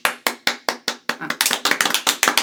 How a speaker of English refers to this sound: Sounds like we have like a clap track. I know. That was us actually clapping people, not a recording.